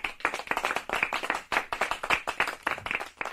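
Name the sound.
people clapping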